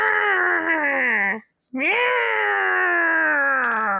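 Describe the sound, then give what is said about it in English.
A person sitting alone at a desk imitates a cat's meow twice as a sound effect for a vulture: two long, loud, drawn-out wailing meows, the first falling in pitch, then a brief pause before a second rising and sustained cry. “I get to make my own sound effects for this vulture. So I was just sitting there at my desk in silence alone going, meow!”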